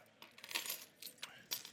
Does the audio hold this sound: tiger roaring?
no